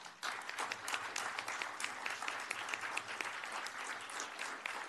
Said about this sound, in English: Our city and our JPA leadership and staffs have been exceptional. I suggest that you give them a big round of applause.